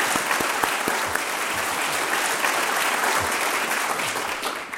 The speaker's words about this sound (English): So I think we should give the two coordinators a round of applause.